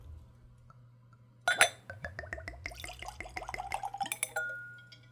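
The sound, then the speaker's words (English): A bottle clinks against a clean Glencairn whiskey nosing glass, then neat, room-temperature whiskey glugs in with quick, bubbly pulses rising in pitch as the glass fills, ending in a brief ring over a low steady hum. “So let's give it a pour.”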